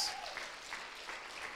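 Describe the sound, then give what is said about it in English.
An audience claps for Jesus together in a dense, steady wash of applause, many hands overlapping at an even, moderate loudness for a couple of seconds with no voices standing out. “Come on, clap for Jesus.”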